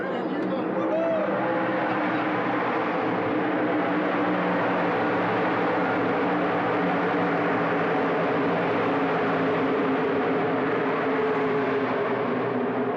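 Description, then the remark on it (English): A continuous, dense roar of race car engines drones for the whole stretch, with steady low engine tones and a wash of crowd-like babble underneath, loud and unbroken throughout. “Check out this audio. What's that, the race cars? Yes, sir.”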